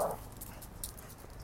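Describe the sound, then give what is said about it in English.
A dog that wants to fight a big dog gives a short, excited yelp or whimper right at the start, followed by faint scrabbling clicks, fairly quiet, with no one talking. “I'm hearing my dog going crazy because there's a big dog that he wants to fight.”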